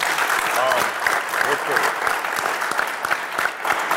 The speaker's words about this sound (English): You guys give yourselves a round of applause.